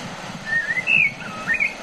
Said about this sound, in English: The sound of blackbirds singing in the scrub. In Australia, next, it's at Point Leo, and it's a very peaceful place, I can tell you that. And isn't it bizarre that we should have those English birds singing in the Australian bush?